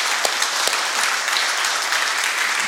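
Steady, dense applause from a large crowd at a church service. It is a continuous wash of many hands clapping at an even loudness, with no voices standing out.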